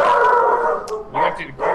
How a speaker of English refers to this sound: Hello, dogs. Kick it off with a herd of dogs. Yep. Become herds, right? As on cue, the dogs bark and we just start talking.